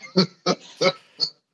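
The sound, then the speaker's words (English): Four short, grunting pig oinks from a Three Pigs children's book, in a quick, slightly uneven rhythm, loud with a bright electronic tinge like a sound-effect toy, then silence. “I can go back to the Three Pigs book.”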